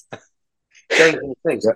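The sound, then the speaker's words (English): An aborted sneeze: a brief sharp catch of breath, then a strained, hissy, voiced burst that fizzles out, followed by two quick throaty gasps. Fairly loud, with no talking. “I was about to sneeze then, but it didn't sneeze properly.”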